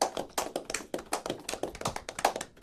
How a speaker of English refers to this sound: Anyway, man, like I said, you know, GOGO Engineers United, clap it up for them. They in the building.